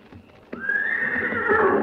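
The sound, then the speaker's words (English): Professor Bone's horse whinnies loudly, a sudden onset swelling into a sustained, wavering neigh that holds strong for over a second, with no talking. “That's his horse, too.”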